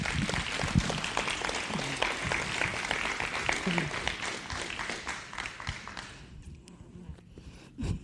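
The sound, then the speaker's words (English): An audience bursts into dense, steady applause as an applause offering to the Lord, many hands clapping at once for about six seconds before the sound thins and dies away into near quiet. “Let's give the Lord an applause offering.”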